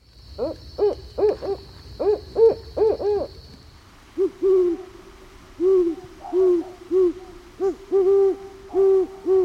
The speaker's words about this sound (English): We've got two owls that are common across Canada, the barred owl and the great horned owl. They definitely have distinct calls, and I'm going to play them back to back for you.